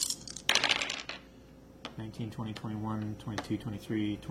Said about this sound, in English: But we still have 1, 2, 3, 4, 5, 6. We still have 3 more dice, to roll. Right? Oh, yeah. 3 more.